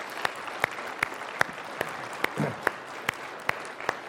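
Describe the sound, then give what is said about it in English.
An audience applauds to thank people who have stood up after their names were called, with sharp claps landing in a steady, evenly spaced rhythm over a continuous wash of clapping noise; a brief low murmur rises midway. “Would you just stand up so we can clap for you and give you our thanks?”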